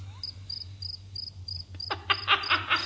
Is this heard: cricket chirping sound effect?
yes